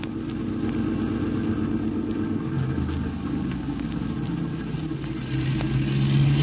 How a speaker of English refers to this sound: Did you notice that car? The one that just passed? Yes. It's followed us all the way from my office in the city.